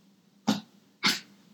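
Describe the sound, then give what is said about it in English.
Coco the dog gives two short, breathy barks about half a second apart for attention, fairly loud, with a faint low hum in the background and no talking. “This dog is having a Coco, what's up?”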